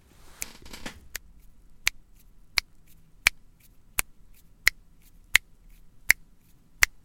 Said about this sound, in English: There we are, I'll play that again for you. Guess what that is? I can do it here. It's clicking fingers, number two.